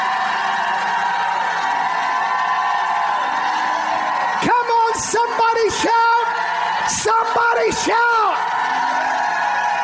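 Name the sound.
audience shouting loudly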